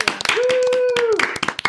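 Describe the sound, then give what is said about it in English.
An audience claps for the Little Rock Nine in a quick, dense burst of sharp hand strikes lasting under two seconds, while a single voice holds a steady cheering note through the middle of the applause. “Little Rock Nine, you're getting the big clap.”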